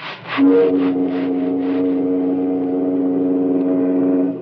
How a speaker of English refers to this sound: That's a wonderful sound, Mr. Hamilton. Oh, just a lot of steam blowing through a whistle. No, you're wrong. It's America.